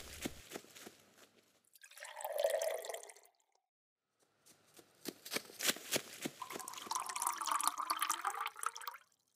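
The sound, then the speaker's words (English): Water gurgles and splashes in two separate pours into large stone jars, each holding about 20 or 30 gallons, with a brief silence between; the longer second pour rises steadily in pitch as the jar fills to the top. Fairly loud, with no voices. “Immediately, they filled the jars all the way to the tip top.”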